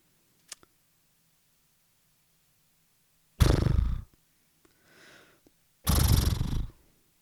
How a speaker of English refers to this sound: Sounds like a horse call. I guess.